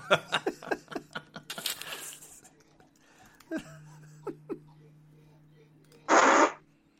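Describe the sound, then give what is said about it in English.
A short, loud, buzzy fart sound from a soundboard blasts near the end, coming after bursts of laughter and chatter and a steady low hum. “It was like, it's the fart board.”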